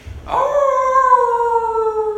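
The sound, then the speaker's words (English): During a class roll call, a person's voice imitates a werewolf howl, one sustained, wavering cry that starts abruptly and slowly slides downward in pitch, loud, with no other sounds. “Werewolf Howls for Roll Call”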